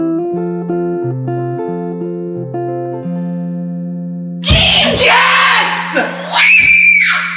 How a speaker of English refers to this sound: Half the episode might be us screaming, so take your earbuds out or turn them down.